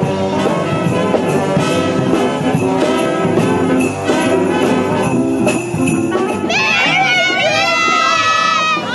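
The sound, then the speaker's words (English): A loud, dense crowd at a community event chatters and cheers nonstop as Santa appears, with excited children's high-pitched shouts and squeals rising above the din, especially toward the end. “Happy crowds finally getting their wish, Santa appearing.”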